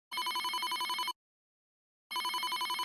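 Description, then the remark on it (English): A cell phone rings in two loud bursts of rapidly trilling electronic tones, each about a second long, separated by a second of silence. “Suddenly, Joni's cell phone rings.”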